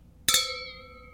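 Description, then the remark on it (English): Two glasses of a dry New Zealand wine clink together once in a quick, bright toast, leaving a clear ringing tone that slowly fades. Crisp, with no talking over it. “Yeah, but we're getting fancy because we're off for a week, I guess. Exactly. So cheers. Cheers.”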